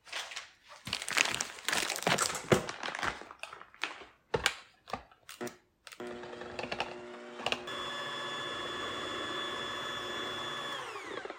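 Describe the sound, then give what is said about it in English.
Crinkly rustling and sharp clicks give way to the steady, high-pitched whir of an electric hand mixer beating cream with a little vanilla into stiff whipped cream, droning evenly for several seconds with no talking. “And then we're going to beat that. We want it pretty stiff.”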